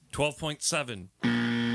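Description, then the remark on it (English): A person speaks briefly, then a loud, flat game show buzzer cuts in and holds a steady, harsh tone until the end. “And the buzzer came in pretty late.”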